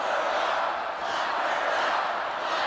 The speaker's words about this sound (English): That is the crowd at the Republican National Convention in 2016, chanting, lock her up. They're talking about Hillary Clinton, who had didn't break any law, but they wanted to lock her up.